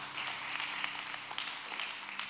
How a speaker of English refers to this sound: Come on, why don't you clap your hands for God's word today?